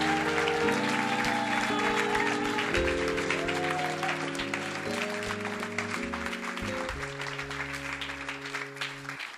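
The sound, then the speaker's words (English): A church audience applauds steadily for several seconds as newly saved women go back to their seats, a dense wash of many hands clapping, while sustained keyboard or organ chords play underneath and shift every couple of seconds. “Clap for them as they go.”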